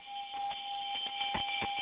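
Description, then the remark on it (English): A welcome bell chime sound effect, played for a first-time caller on a call-in show, rings as a steady, sustained tone at a fairly even level, with a few soft clicks and taps scattered through it and no talking. “You get the new welcome bell.”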